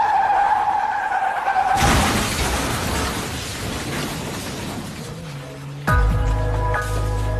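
A high, steady tire screech from a vehicle braking hard, losing control and swerving into oncoming traffic, cut off by a sudden loud crash and rumbling noise, then a blaring horn-like tone near the end.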